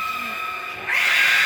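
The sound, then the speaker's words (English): An eerie, drawn-out screech holds steady, then swells into a harsher, louder scream halfway through. It is the voice of a disembodied presence screaming and screeching when angry. It sounds continuous, like a wailing creature, with no talking. “But when it was angry, it would scream and screech.”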